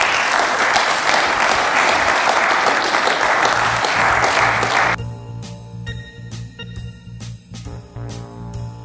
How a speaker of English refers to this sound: Well, thank you very much for attending. We appreciate you being at Savory this weekend. And so, round of applause for our panelists this evening.